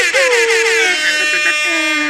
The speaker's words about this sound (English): For the first time, we got a motherfucking legend in the house. Let me get some air horns.